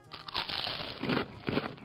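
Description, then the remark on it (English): A piranha-bite sound effect of a piranha biting under the water: a dense, crackly crunching runs throughout, with two heavier, juicier chomps standing out near the end. No voices are heard. “That's what happens when a piranha bites you. You're going to hear that.”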